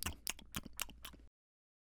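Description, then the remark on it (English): Crunchy tacos being chewed: about five sharp, crackly crunches in a quick, steady rhythm, loud and alone, stopping abruptly. “Crunch, crunch, crunch.”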